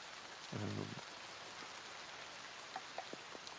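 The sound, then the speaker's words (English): Steady rain patters on a couple of tarps laid over an old, ramshackle wooden hut in a constant soft hiss, with a few sharper drips near the end and a brief low murmur early on. “He is staying currently in this old piece of wood, kind of ramshackled hut with a couple of tarps laying on top of it to stop the rain.”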